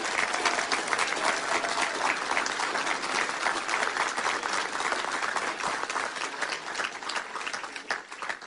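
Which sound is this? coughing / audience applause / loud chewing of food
audience applause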